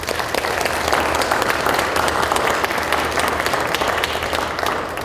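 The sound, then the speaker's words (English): An audience bursts into a sustained round of applause welcoming guests, many hands clapping in a dense, steady roar that stays loud and even for about five seconds with no voices on top. “Please join me in giving them a round of applause and welcoming them.”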